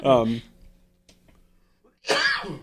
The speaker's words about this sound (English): I wish I could stop coughing. I'm sorry about that.